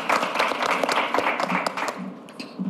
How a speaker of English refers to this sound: A round of applause, please, ladies and gentlemen.